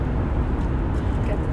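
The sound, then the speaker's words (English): A steady low rumble of a car driving closely behind another car in traffic, with road and engine noise holding constant throughout the short stretch and no clear talking over it. “I was just wondering, why is this car in my ass?”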